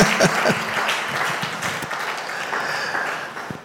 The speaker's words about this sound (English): Can you clap for her, please?